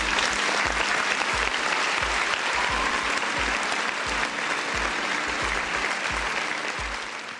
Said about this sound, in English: I gotta give my round of applause